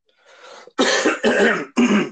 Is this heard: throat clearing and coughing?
yes